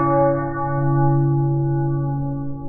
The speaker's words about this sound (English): There you'll find three great programs, starting with Bells of Peace, which is a national bell tolling on the 11th hour of the 11th day of the 11th month.